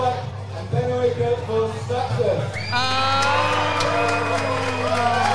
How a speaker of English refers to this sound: Can we get some applause ready? Yeah, let's hear.